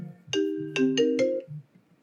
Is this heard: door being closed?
no